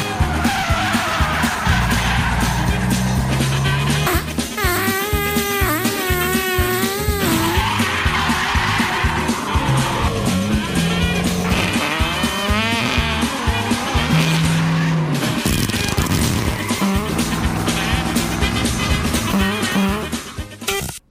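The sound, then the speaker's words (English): A loud car chase between a diesel pickup truck and a pursuing electric vehicle: engines roar without letup while tires screech again and again in long, wavering, high-pitched squeals, and the whole din cuts off abruptly at the end. “then our Social Justice Warrior is in pursuit in an electric vehicle that he stole from his mom, which runs on unicorn farts.”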